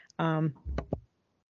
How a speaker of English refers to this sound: Sorry, I had to cough.